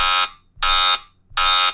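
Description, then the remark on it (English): A vehicle backup beeper sounds three loud, evenly spaced electronic beeps, each a harsh, buzzy tone about a quarter-second long, clear with no one talking. “Yeah, so let's quick back up here a little. Beep, beep, beep.”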